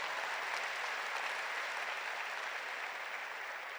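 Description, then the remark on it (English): A large crowd claps steadily and continuously, a dense wash of many hands applauding at once, loud and sustained for a few seconds with no voices standing out. “If you are going to clap for Jesus, that clap is not...”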